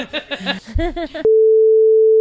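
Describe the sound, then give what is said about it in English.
Speech with a harmonic voice cuts off abruptly into a loud, steady single-pitch censor beep that holds unwavering for about a second before stopping. “Can I edit? Can you edit it? Beep.”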